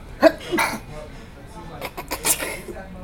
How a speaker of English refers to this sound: Oh, no. Oh, no. Sneezing on the show.